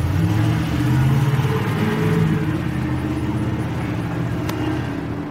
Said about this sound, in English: Don Mud Construction. Then, all of a sudden, the truck speeds off in a hurry.